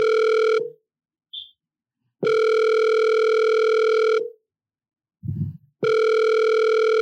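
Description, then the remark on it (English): A telephone ringback tone repeats while a call is placed: long, steady, buzzy tones of about two seconds, separated by silent gaps, clear, with a small soft bump between rings. “Who's making a phone call?”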